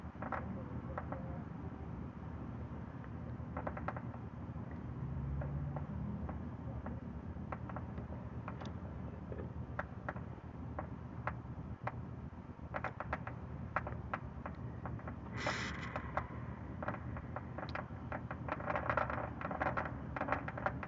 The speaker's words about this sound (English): Well, y'all hear the fireworks and shit? Shit, look. Let y'all get a live show from the hood. Fireworks are already popping on.